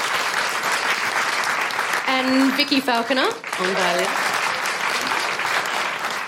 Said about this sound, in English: So I've brought with me, please give me a round of applause for